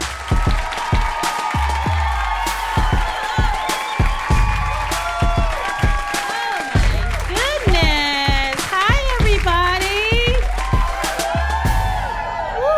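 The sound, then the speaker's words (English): A live audience at a Two Dope Queens show at Union Hall claps steadily for about thirteen seconds, with loud whoops and rising, swooping cheers breaking out over the applause, especially toward the middle and end. “Yeah, you guys are a hot crowd.”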